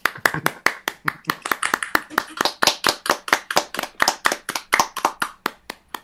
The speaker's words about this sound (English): Alex, thank you very much for coming along to Cartoon County and joining us via the magic of Zoom. It's been great to hear you talk about your work. If everyone wants to unmute and maybe applaud so that we can have some raucous